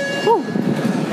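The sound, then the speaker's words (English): Machinery of a canal lock in Panama rumbles and clatters steadily as boats leave the lock, while a short whine rises and falls early on, over a thin, constant high hum and general mechanical commotion. “Gives you a sense of all the, you know, just different machines and commotion going on.”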